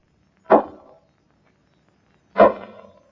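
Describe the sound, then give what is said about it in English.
Two sharp, solid knocks spaced about two seconds apart, each a single hard rap with a short resonant decay, heard alone against silence, as the answering signal at a séance calling to a spirit. “Knock twice if you hear me call.”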